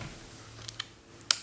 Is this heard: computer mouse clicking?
yes